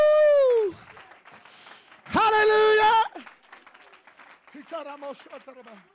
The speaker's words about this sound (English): Oh, you want to shout unto God? Somebody clap your hands in this house.